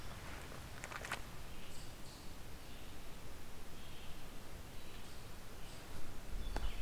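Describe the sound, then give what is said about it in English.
Faint birdsong from several species, including the thin high calls of cedar waxwings, song sparrow phrases and red-eyed vireo notes, scattered over a steady outdoor hiss with no talking. “Several cedar waxwings. Song sparrow. Red-eyed vireo.”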